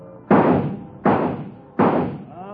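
Three sharp, loud rifle shots at moving bird targets in a shooting gallery fire at an even, steady pace, each with a hard crack that fades into a brief echoing tail. No one speaks.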